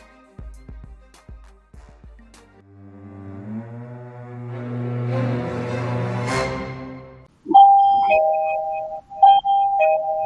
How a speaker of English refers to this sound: Do you have a person at your door? I don't know what is going on because I'm not supposed to be involved in anything outside this room. But yeah, that was a doorbell. Wow.